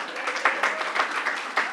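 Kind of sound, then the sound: crowd, audience clapping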